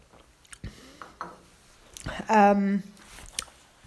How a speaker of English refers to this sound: Sorry, I'm just going to have a sip of my tea.